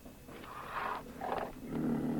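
A big-cat roar sound effect played from a soundboard: three rough, growling bursts, each swelling and fading, with the last one lower and rumbling. The roars are loud and there is no talking.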